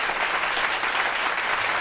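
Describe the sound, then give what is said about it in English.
Steady, dense applause from many hands for the announcement of a second season of the TV series Chucky. A continuous crackling wash of clapping holds at an even, fairly loud level throughout, with no voices over it. “That's a big round of applause for this, because they hit this out of the park.”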